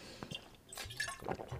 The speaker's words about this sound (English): I'm going to sip my water.